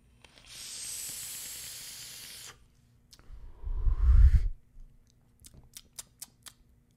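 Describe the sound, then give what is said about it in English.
A vape draw from a Recoil RDA atomizer with Heavy Hitta e-liquid from Tenacious TX Vapes and Heavy Metal Vapor: a steady, bright sizzling hiss lasting about two seconds, then a breathy, rumbling exhale, followed by a quick series of sharp little clicks. “Recoil RDA on top. Let's give it an inaugural toot.”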